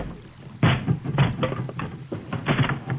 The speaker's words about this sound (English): And I just kicked down a door to your forest.